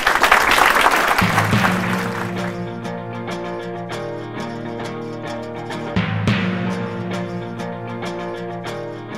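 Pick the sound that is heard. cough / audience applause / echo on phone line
audience applause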